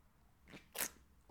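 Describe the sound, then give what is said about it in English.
A quiet sip of hot coffee: two short airy slurping bursts in quick succession, the second louder and hissier, with no talking. “Gotta take a sip of coffee here.”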